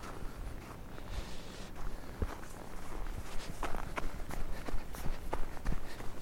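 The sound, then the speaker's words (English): Feet crunch over fresh snow in a quiet neighbourhood in winter 2017, in a quick, steady rhythm, each step a crisp impact repeating a dozen or so times against a soft outdoor background, with no talking. “2017, and there is quietness in my neighborhood, and I'm about to go for a winter run, and there will inevitably be winter sounds of snow clearing and crows and feet stomping and freshness of the snow.”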